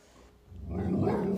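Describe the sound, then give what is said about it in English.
A speaker's upset pet dog barks, a low, rough, rumbling sound that swells after a quiet start and holds steady to the end, with no talking. “Oh, my dog is upset.”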